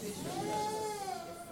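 A neighbour's black cat wearing a necklace gives a single long, drawn-out meow with a wavering, slightly rising then falling pitch, clear and tonal over a low, steady background noise.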